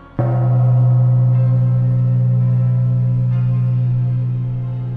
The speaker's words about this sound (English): The gong strikes. My time is up.